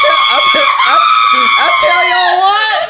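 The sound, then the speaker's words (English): A man screams loudly and continuously, a shrill, strained wail that wavers in pitch for about three seconds, alone with no talking. “I can scream all day.”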